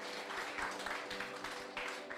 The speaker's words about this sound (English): Why don't we give the Lord the loudest clap offering that we can give Him?